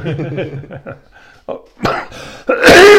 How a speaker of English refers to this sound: I haven't coughed all day, and all of a sudden I've got this hack here. Ugh, allergies.